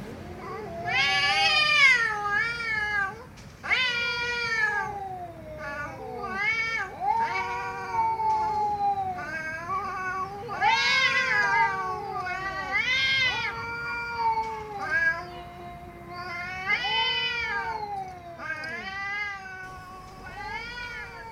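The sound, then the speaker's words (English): Ghostly phantom cats yowl and caterwaul continuously, a string of loud, drawn-out meows with rising and falling wails, overlapping one another with only brief gaps. No one speaks. “One dog attacked the ghostly cats, only to go right through the phantom felines and knock itself out, colliding with a wall.”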